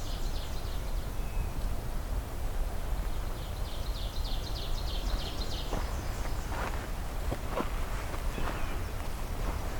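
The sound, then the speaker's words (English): A nearby bird calls with a run of quick, repeated high chirps that trail off, followed by a few crisp rustling or crunching steps over a steady outdoor forest background. “I actually don't know where this bird is, but sure sounded close.”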